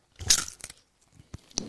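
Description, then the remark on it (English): A loud, crackly crunch of all-dressed Ruffles potato chips being bitten, followed by a few softer, sharp crunches as the chewing continues. No one speaks. “The all-dressed Ruffles. Nice. Have they got a good crunch still?”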